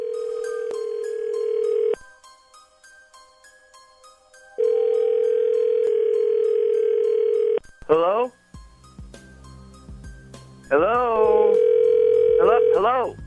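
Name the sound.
telephone ringing tone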